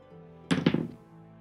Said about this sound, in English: I just rolled a dice. I heard it.